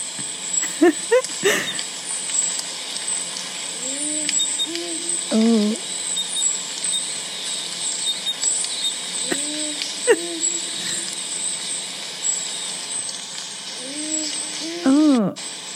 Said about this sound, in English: So I'm going to play you the powerful owl call. Noise. Because is what people try to say the Wilga Waterhole ghost is just the powerful owl.